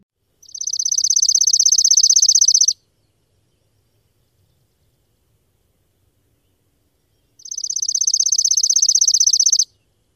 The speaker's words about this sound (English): So let's refresh our memories. Here's what a Chipping Sparrow sounds like.